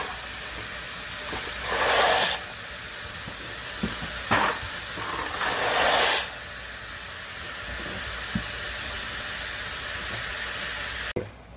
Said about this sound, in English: So my pot here, I have boiling water. I added my salt. Now I'm going to add 2 boxes of penne noodles.